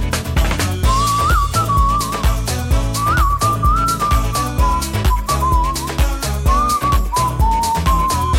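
A bright whistled melody carries a tune in steady phrases over a full, rhythmic backing track with bass and drums, with no voices.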